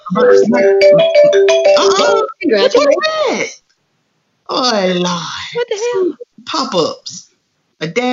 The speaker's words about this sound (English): What the hell? Pop-ups. A daggone pop-up. Okay, that sounds like your phone. That wasn't your phone? No, it wasn't my phone. It was on the computer.